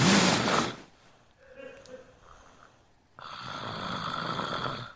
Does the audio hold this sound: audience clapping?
no